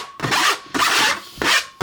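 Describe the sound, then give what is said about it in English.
Cornstarch-thickened pastry cream being scraped through a tamis sieve: three steady, rasping strokes in an even rhythm, each about half a second, with brief pauses between and no talking. “Zip it through the tammy.”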